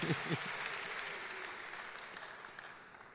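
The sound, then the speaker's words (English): A crowd claps steadily, a dense wash of many hands that holds fairly even for about three seconds before thinning slightly, with a faint voice at the very start. “I think you want to clap for God, not for me.”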